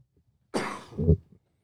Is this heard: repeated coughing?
yes